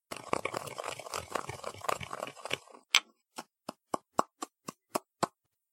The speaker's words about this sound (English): I will now grind up the cough drops.